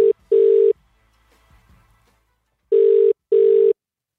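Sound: phone number being dialed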